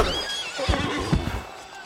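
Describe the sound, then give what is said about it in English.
A bandit's horse whinnies loudly as it is knocked to the ground with its rider, a shrill wavering neigh lasting a couple of seconds, with a couple of dull thumps underneath and no talking. “I came in at an angle and knocked the horse and bandit to the ground.”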